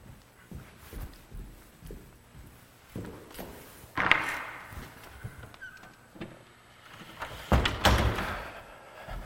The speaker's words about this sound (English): Let me just briefly close this door.